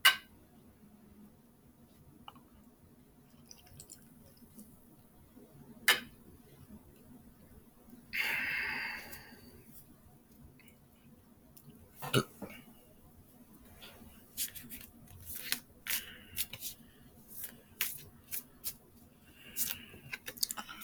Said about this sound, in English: But I am going to flip some cards.